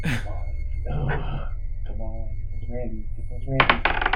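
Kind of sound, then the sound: six-sided die being rolled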